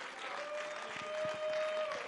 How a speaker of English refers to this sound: Come on, clap your hands and let's give praise to the Lord.